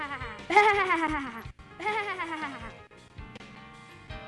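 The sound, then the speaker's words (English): Two loud, wavering sheep bleats in a Christmas play, each about a second long with a brief pause between, followed by fainter bleating and background rustle. “I am Gabriel, Mary, and I couldn't hear you because of the sheep.”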